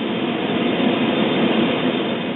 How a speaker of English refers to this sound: A buzzing sound filled his ears.